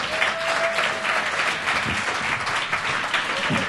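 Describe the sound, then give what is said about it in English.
Steady, sustained applause from an audience for a musician guest, a dense wash of many hands clapping at an even loudness throughout, with no voices standing out. “All right, let's keep that applause going, everyone.”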